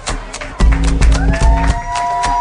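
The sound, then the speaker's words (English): A live crowd murmurs and cheers while scattered clapping and sharp taps ring out, with low thumps and a faint sustained tone rising toward the end, at the live Hawks Live radio show at Pearl Seafood and Oyster Bar in Bellevue's Lincoln Square on a windy Thursday night. “We've got a good crowd here tonight.”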